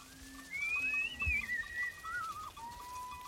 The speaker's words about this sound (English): The sounds of Maasai men whistling to their cattle to call them out to graze.